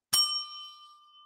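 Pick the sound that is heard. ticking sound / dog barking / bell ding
bell ding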